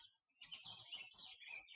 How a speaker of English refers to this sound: I think that's a finch. Oh, no, he stopped. He said, you don't hear me, you don't see me. Finch made me lose my train of thought.